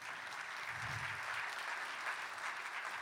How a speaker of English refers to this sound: Who's an educator in the audience? Real quick, a round of applause for all educators.